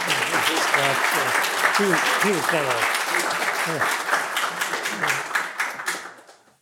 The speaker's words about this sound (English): You can applaud if you want to.